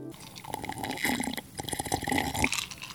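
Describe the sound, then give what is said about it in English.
Wet, gurgling slurps of someone drinking straight from a cup without a straw, a dense run of bubbly sucking and splashing sounds lasting a few seconds before stopping abruptly, with no talking. “Slurping is definitely the classier thing to do.”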